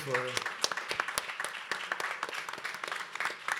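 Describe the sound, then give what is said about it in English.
An audience at a forum applauds its panelists steadily, many hands clapping in a dense, even patter with a few sharper individual claps standing out. A brief tonal voice or sound is audible at the start. “So we want to give a big round of applause to our panelists.”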